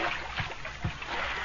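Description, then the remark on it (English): Heavy water sloshing and splashing, with two deeper surges as the great elephant Tila is ridden into a river in India on a sunny day for a scrubbing, over a steady wash of moving river water. “and so he rode the great elephant into the river for a scrubbing.”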